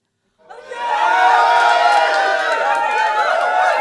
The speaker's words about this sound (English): Do you want to play the sound again? The double the upside? No. The cheering? Yeah. Okay, go ahead.